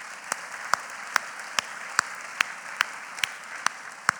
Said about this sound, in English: Can we clap for that? Yeah.